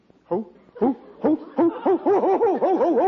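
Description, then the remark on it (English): A man's voice imitates an owl with a series of loud "hoo" calls, starting spaced apart and quickening into a rapid, bouncing run of rising-and-falling hoots. “What are you hooting like an owl for?”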